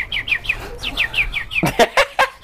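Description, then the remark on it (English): A voice imitates birdsong: a quick run of about eight high, descending chirps, then four louder, broader whistled calls, unaccompanied. “I could do some bird song for you.”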